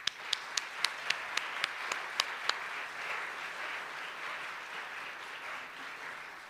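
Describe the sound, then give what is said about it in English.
A handful of crisp, evenly spaced claps quickly swell into sustained, steady applause from a sizable crowd thanking the faculty at an Eastern Nazarene College graduation, with no one speaking over it. “If you could please raise your hand in applause to thank all the faculty.”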